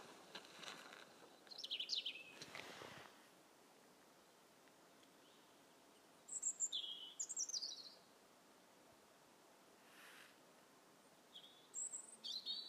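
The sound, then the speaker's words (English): Outdoors, songbirds sing several short, bright, high-pitched phrases from a moderate distance, recurring every few seconds over steady background hiss and a soft whoosh of wind or distant traffic. “I'm now becoming... suspicious that maybe those birds are robins.”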